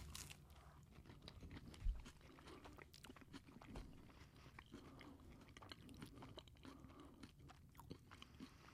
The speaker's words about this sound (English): I can totally hear you chewing. I know. All right. I'm chewing with my mouth open.